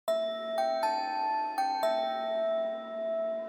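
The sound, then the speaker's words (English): A short melody of five pitched, bell-like notes played on a keyboard patch made from a pitched-up recorded sound, each with a struck attack and a shimmering sustain, stepping between nearby pitches before the last note rings out alone. “I also pitched it up and created a keyboard patch of that sound that can play actual notes.”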